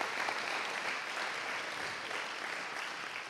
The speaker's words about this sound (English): Come on, you can clap. It's good stuff, isn't it? It's powerful.